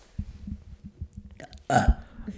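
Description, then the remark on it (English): A single loud, guttural burp erupts after a low, rumbling build-up, ending abruptly with a brief throaty rasp. No talking accompanies it. “I burp a lot.”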